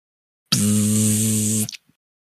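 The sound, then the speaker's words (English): A boarding house door intercom buzzer, pressed at the Carl Tempest button, sounds one steady, harsh buzz lasting just over a second, loud and unbroken with a droning low hum, then cuts off, followed by a faint click from the door. “This is buzzing sound.”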